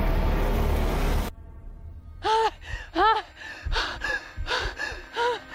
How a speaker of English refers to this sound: Okay. So you've got machine noise, then silence, then a lady panting.